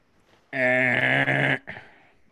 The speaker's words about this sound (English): That's a buzzer. That's a buzzer saying incorrect.